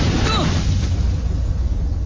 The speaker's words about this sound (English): The way they show it is how when Zuko tries to lightning bend, he just causes an explosion right in front of him.